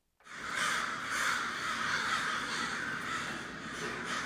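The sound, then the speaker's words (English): A dense chorus of many crows cawing continuously, heard from a balcony, many birds calling over one another in a loud, overlapping din outdoors, with no one speaking. “It's a lot of crows. I mean, this would be a murder of crows.”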